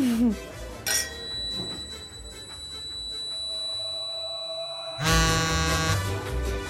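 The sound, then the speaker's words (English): A phone rings with a steady, high electronic tone that holds for several seconds, framed by two louder bursts of noise at the start and end, and no one talks. “Will you excuse me? One of my phones is ringing.”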